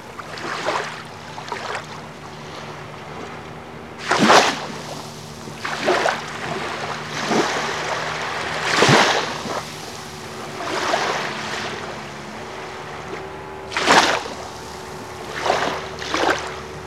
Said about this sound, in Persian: الان نزدیک شدم موج‌های آب و دارم کیف می‌کنم از منظره آبی که روبروم دارم می‌بینم.